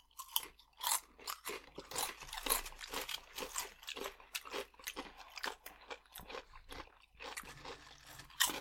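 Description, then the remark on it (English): Steady crunching of Fritos corn chips being chewed, a rapid series of crisp bites and munches with brief pauses, no talking. “I forget how much I like the taste of Fritos.”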